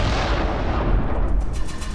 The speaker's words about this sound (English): The lightning-infused fireball fires at the android, but the mechanical man easily dodges.